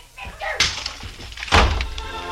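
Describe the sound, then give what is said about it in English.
A heavy oversized ashtray is hurled by a woman and lands with a loud crash, then about a second later a second sharp bang follows as she hurries out. “She grabbed the handy oversized ashtray and let it fly at us, then beat it.”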